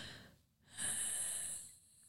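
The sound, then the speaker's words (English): A person makes a squeaky exhale: a short breath-hold pause, then a single high, thin whistling squeak carried on the out-breath for about a second, fairly loud, with no talking. “And she's like exhaling but like squeaking.”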